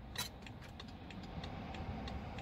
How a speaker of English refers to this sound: That's a 5 Series diesel touring. Automatic.